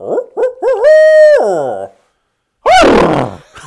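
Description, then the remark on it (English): A person imitates an owl hoot with their voice, a loud series of rising and falling hooting calls, followed after a short pause by another drawn-out hoot. “I owl hooted at them though, and they were fucking snapping right back at me.”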